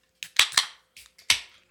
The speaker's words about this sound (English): Cheers, bro. Let's go. Cheers. Tink, tink.